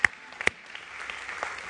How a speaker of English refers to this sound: Y'all give him a round of applause.